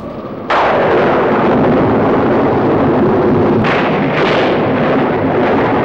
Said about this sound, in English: Listen to that storm! How long do you think this hut's gonna last? These walls should have blown away hours ago.